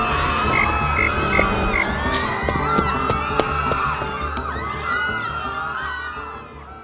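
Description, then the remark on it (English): A loud, dense chorus of frogs croaking, with many overlapping calls and sharp repeated clicks layered together, holding steady before thinning out near the end. “Frog! Perfect.”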